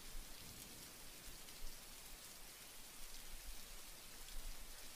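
Steady rain falls in a dense, even hiss across the whole span, with scattered drops pattering on a surface and slight swells in loudness. No voices or other sounds.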